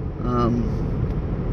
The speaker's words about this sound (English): A lot of traffic today.